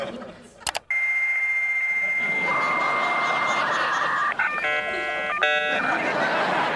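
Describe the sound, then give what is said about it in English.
A dial-up modem handshake as a first home computer signs on to the internet, heard in That '90s Show: a couple of clicks, then a steady high tone, a wash of hissing static, and warbling, shifting beeps and chirps near the end, loud and continuous with no talking. “And it shows them getting their first computer and signing on to the internet. And there's that sound.”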